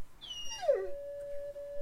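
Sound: wolf howl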